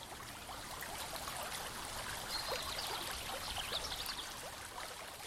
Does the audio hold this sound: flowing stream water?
yes